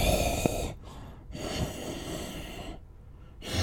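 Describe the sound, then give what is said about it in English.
A voice imitates the breathing of a sleeping spiky creature lying at the edge of a room: about three raspy, snorting breaths in and out, fairly loud, separated by brief pauses, with no talking. “You look in there and you see sleeping in the room is one of those spiky creatures laying on the edge, just sleeping, breathing.”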